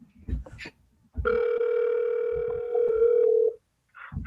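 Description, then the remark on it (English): A phone rings on an outgoing call to the speaker's mother: one steady, sustained ringback tone lasting about two seconds, fairly loud and clear, with brief bits of talking just before and after it. “Can you hear the ringing?”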